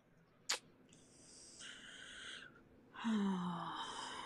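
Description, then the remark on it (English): A short sharp gasp, then deep breathing: two long, wheezy, raspy breaths, one drawn in and one pushed out, fairly loud, with no talking. “Deep breathing.”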